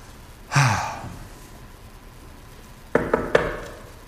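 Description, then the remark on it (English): A sleepy sigh or breath, then a pause, followed by three quick, sharp knocks on a door in a steady rhythm, moderately loud, as a neighbor knocks late at night. “Is that a knock at the door?”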